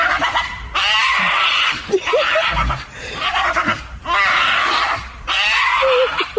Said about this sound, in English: I think it's a screaming pug. A screaming pug. Yes, a pug dog.